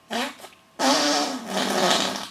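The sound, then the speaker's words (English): Two buzzy, sputtering fart noises imitated with hands, a short one followed after a brief pause by a longer, louder, fluttering one, alone with no talking. “And that wasn't actually me farting, that was just me demonstrating it by using my hands.”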